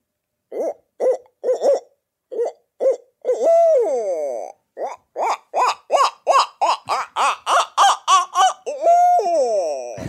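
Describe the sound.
A person imitates a barred owl's laughing call: a run of rhythmic hooting notes that speeds into a rapid cackling series with drawn-out, wavering hoots, loud, with no one speaking.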